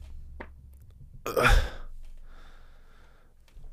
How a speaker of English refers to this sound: Oh, yeah. If you're wondering what that was about, I farted and I don't know if it got caught on through the mic or not